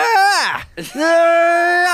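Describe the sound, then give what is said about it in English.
A voice imitates Link's spinning-sword spin-attack yell from a video game: a loud, strained cry swoops downward, cuts out briefly, then snaps back into a long, steady, sustained shout. “That's that Link screaming? Spinning sword.”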